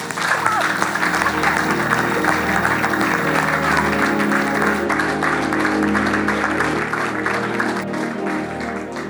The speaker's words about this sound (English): Do you have hands? Wave your hands. Clap them.